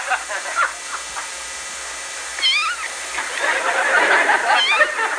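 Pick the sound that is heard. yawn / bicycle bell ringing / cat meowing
cat meowing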